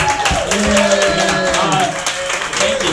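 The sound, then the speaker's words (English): At a comedy show, an audience claps for one of the show's hosts steadily for about three seconds, a dense, loud patter of many hands, with a few cheering voices and whoops rising over the applause. “You can clap for me, or you don't have to.”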